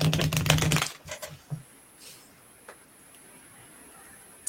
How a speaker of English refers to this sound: I cannot shuffle. So this deck is very bent and very fucked up. So glad. Because I cannot shuffle.